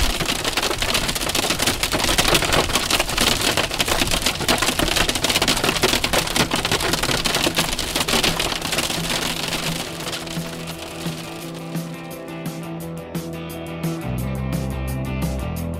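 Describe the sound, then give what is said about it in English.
Hail pelts down in a dense, loud, crackling barrage of countless rapid impacts while storm chasers drive through a storm in Tornado Alley, then eases off after about eleven seconds as a steady, softer tonal backdrop takes over. “Yeah, we already have hail.”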